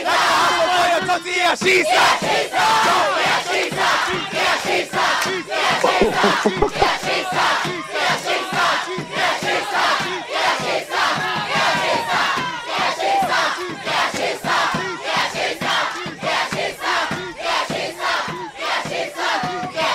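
A large crowd of high school students chants a war cry in unison, loud and sustained, with rhythmic shouted bursts repeating steadily for the whole stretch.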